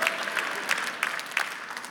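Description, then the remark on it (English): An audience claps in a steady, dense patter of many hands, with a few sharper claps standing out at regular moments over a bright, continuous wash of applause. “Some guys are afraid to clap.”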